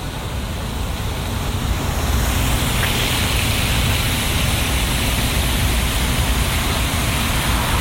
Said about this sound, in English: Okay, so here's Gator Golf. You hear the water flowing.